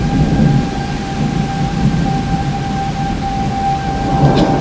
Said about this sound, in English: You know, at this point, it really seemed like the character of the storm had changed. It has. No, it's more of just a regular rainstorm that you expect during the summer around here. No, it went from ultra-violent to pedestrian.